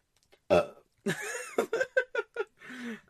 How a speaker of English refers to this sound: Wait, I'm about to burp.